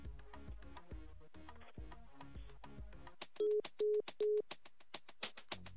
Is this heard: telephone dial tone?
yes